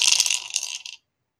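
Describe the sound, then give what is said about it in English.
A brief clatter of dice tumbling across a hard tabletop, rolled for crossbow and sneak attack damage in a tabletop role-playing game, a quick burst of rattling clicks that settles and stops after about a second, with no voices. “And dice.”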